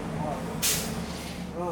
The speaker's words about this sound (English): Trash. Of course, a trash truck comes right now. Oh my gosh. Perfect.